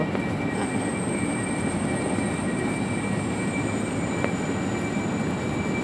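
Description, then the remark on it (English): A long train rumbles steadily past on the rails, a continuous heavy low roar with faint high metallic whine over it, loud throughout with no voices. “It's a long train, isn't it? It's a big one.”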